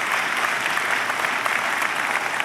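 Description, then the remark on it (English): Steady applause from a church audience, a dense wash of many hands clapping at an even, sustained level throughout with no voices standing out. “They don't ever clap for me when I read the scriptures.”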